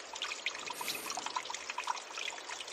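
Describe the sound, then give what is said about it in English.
Shallow creek water, just a few inches deep, trickles and burbles steadily over stones as people cross it on a late summer or early fall afternoon, a continuous bright babbling with small splashy bursts, moderately quiet, with no voices. “As we cross the creek, it's just a few inches deep.”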